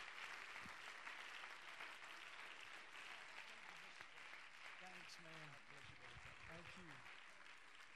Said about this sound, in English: Give the Lord a hand clap of praise as Brother Keller comes to preach the word of the Lord.